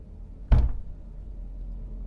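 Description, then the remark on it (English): One dull, solid knock, given in reply to a spoken question, lands out of quiet and dies away quickly, with no second knock following and no one speaking. “One knock for no, two for yes.”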